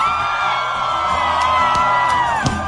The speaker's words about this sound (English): But they are rocking out, and people have gathered, and really that's all you can hear is the people and the tambourine. You hear the people yelling in the audience and the tambourine.